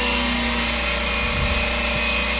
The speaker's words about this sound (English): You can hear the pumps cavitated.